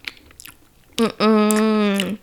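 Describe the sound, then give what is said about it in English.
A person imitates open-mouthed chewing: a few soft, wet lip smacks and clicks, then a loud, drawn-out voiced hum that sounds like exaggerated munching. “people chew and they make that noise unnecessarily, it drives.”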